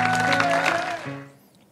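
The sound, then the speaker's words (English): An audience claps hands for Jesus Christ in a dense, noisy wash over sustained musical tones, then the clapping dies away within about a second and leaves a faint hum. “One more time, give a great hand clap to Jesus Christ, the King of Kings and the Lord of Lords.”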